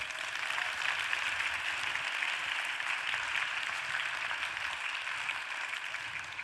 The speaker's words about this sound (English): Please give Daniel a round of applause.